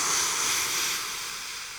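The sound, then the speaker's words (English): A voice imitates escaping steam with a steady, breathy hiss that holds for almost two seconds and tapers off slightly toward the end, with no talking. “What's like the sound of like loose steam?”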